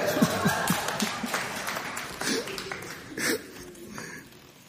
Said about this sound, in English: Clap for yourselves.